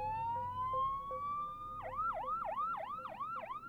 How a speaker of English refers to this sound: Then we see an ambulance coming down the dirt road.